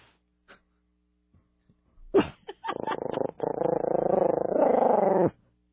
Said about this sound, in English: And he's growling. Wait, hold on. Can we get him to growl again? Wow.